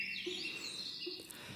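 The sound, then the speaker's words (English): Little birds singing in a continuous high, warbling stream of chirps and trills, fairly soft, with a couple of brief lower tones underneath and no talking. “Shall we flutter our wings with those little birds and our little bird's song?”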